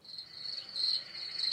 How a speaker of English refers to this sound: I think there's a sound for that. I knew he was going to look for it. I think I saw a sound for crickets. I hope there is one. There is one. I saw it.